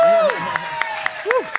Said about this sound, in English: So that deserves a round of applause.